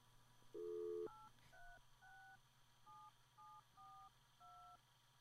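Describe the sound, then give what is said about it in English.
A short steady tone, then a series of about seven distinct beeps from a telephone keypad being dialed, evenly spaced and clear over faint background hum, with no talking. “Can I use the phone?”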